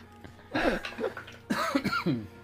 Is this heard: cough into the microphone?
yes